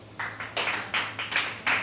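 An audience in a small room claps in answer to a prompt to clap if they are tops, in scattered, uneven bursts, several short swells of applause rising and fading over a couple of seconds, fairly soft overall with no voices.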